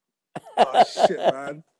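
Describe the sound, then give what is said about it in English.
A quick fit of about four harsh coughs in rapid succession, fairly loud, with no talking around them, from a person with hay fever. “I'm coughing so much. My hay fever's going crazy right now.”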